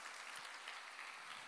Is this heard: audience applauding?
yes